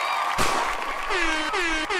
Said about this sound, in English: My bad. My bad on the gunshot. Hey, the gunshot had me tripping. I was about to duck, start low crawling.